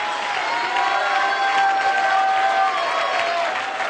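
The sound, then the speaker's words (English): An audience claps and shouts praise to God together, a steady, dense wash of applause with voices crying out over it, loud and sustained throughout with no pause. “One more time, would you clap your hands and lift your voice and give God a shout of praise?”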